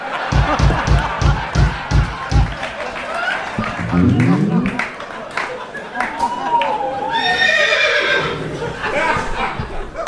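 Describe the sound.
A horse neighs loudly in a long, quavering whinny, followed by a higher shrill call, with rhythmic thumping and voices mixed in around it.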